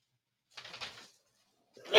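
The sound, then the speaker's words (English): A single sneeze bursts out as a short, breathy, hissing blast, followed after a brief pause by the sharp start of another loud, noisy burst. “Bless you.”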